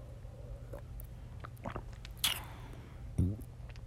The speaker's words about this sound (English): But before I go, I'm going to take one more gulp of this drink.